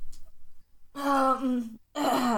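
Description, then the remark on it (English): A big, drawn-out human yawn, loud, rising into a voiced groan after a quiet moment, then a second breathy vocal sound starting just after. “Sorry, I was literally mid-yawn. probably the biggest yawn I've ever yawned, to be honest.”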